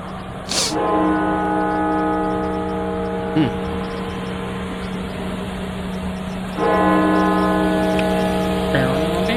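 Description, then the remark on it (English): The bell of Washington National Cathedral in Washington, D.C. tolls twice, about six seconds apart, rung for the lives lost to COVID-19. Each heavy strike leaves a long, sustained ringing hum of layered tones that lingers steadily until the next stroke. “That is the Washington National Cathedral banging their bell 500 times.”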